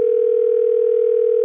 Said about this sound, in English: I think our engineer Keith is punching up the phone number right now.